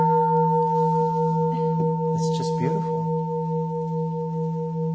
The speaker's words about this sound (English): I really like to ring this bell. Just, you know, I don't get to sit up here and do it. I really do. I'm kind of making a joke about it, but I'm really not joking. You know, I love to ring this bell.